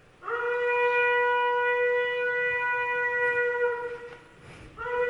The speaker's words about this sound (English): Ram's horn. I had to find a trumpet player who could do that. And it's a lot harder than playing a trumpet.